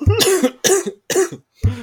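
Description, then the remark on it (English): Four sharp coughs in quick succession from a person reacting to the price of a round of golf, each a harsh burst with a brief gap between, the last one slightly shorter and cut off. “That price made you cough, bro.”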